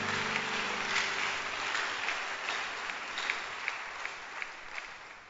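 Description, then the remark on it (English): A church audience claps together for the great things God is doing, steady, dense applause, a broad wash of many hands with some sharper individual claps standing out as it gradually thins toward the end. “But clap your hands for the great things God is doing.”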